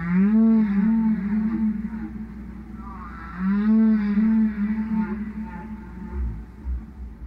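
Long, mournful humpback whale calls with rich harmonics, two drawn-out moaning phrases rising and falling in pitch, loud and close with no talking.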